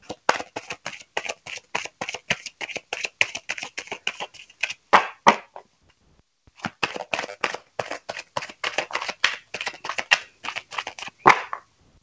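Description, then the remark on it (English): Two bursts of rapid card shuffling, a deck shuffled like poker cards, crisp riffling clicks, each run ending in a sharper snap, separated by a brief pause. “I need to stop shuffling my decks like some poker cards and take it easy on them.”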